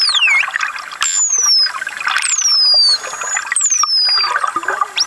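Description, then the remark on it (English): False killer whale vocalizations: a series of high, sliding whistles that sweep downward in pitch, repeating every second or so over a steady bed of crackling clicks and watery hiss, with no talking. “This is what the false killer whale sounds like.”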